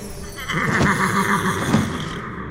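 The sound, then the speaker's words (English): A flying horse, called Pegasus, whinnies once in a long, shrill, quavering call lasting a couple of seconds. It is loud, with a breathy tail and no one talking. “Did you see that? A horse just flew by.”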